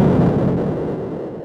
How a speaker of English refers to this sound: Well, not so much, not Pac-Man, but, I mean, it's pretty much got the same sound as Galaxian and Rally X and all the others. I mean, it's got the really nice, deep bass explosions that I love so much. The explosions are great.